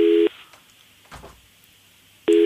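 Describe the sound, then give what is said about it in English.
A telephone ringing tone on the line as a call to Dieter von Teese is placed: a loud, steady electronic burst, a pause of about two seconds, then the tone returns. There is faint background noise during the pause. “What does that mean, engaged or ringing? Ringing.”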